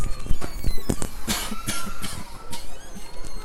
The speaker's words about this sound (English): No, that wasn't a joke cough, that was I really had to cough.